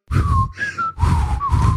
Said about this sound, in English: I can't whistle for crap.